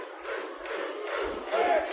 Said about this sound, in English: Crowd starting the chant.